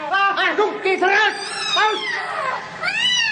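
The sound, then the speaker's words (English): An angry cat yowls loudly as it launches itself at a man, a continuous run of harsh, wavering wails that rise and fall in pitch over a few seconds, with no talking. “Her eyes blazed with ferocity. Her hair bristled till she seemed twice her normal size.”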